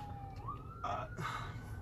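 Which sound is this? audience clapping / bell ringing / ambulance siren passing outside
ambulance siren passing outside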